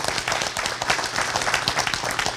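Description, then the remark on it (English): An audience applauds to answer who checked out the museum this weekend, with steady, dense clapping that holds at an even loudness for the whole moment, a bright rattle of many hands with no voices standing out. “Again, by another round of applause, who checked out the museum this weekend?”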